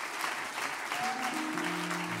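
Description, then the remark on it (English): A standing church audience applauds to honor a pastor in a steady, dense wash of clapping that holds at an even level throughout, while sustained low organ-like tones swell up underneath in the second half. “Put your hands together, and let's let the Holy Ghost have his way.”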